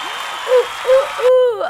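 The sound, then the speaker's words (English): Dense applause from a crowd, with repeated rising whoops and cheers over the clapping. The clapping cuts off abruptly, leaving one loud, sweeping cheer at the end. “We should just, like, just, like, insert, like, a applause sound. Cheering crowd.”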